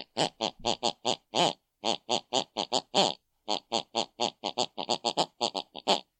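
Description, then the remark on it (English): An elderly woman snores in bed in the room next door, heard through the bedroom wall: pig-like snoring as a fast, steady string of short, harsh snorts and grunts, roughly five per second, loud and with no talking. “The last thing my mother watched on the television before she went to bed, she snores.”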